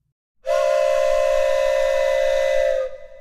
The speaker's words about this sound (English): The train was coming closer. I could hear its bell ringing and the cry of its whistle.